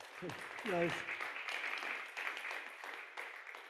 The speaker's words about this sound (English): I feel like that's a bit like the applause that you give to somebody who's 100 years old. You know, it's like, well, you survived this long, so no matter what, you deserve some applause there, you know.